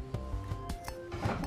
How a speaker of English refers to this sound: I had to move my chair. Sorry if you guys hear this bullshit, me moving around.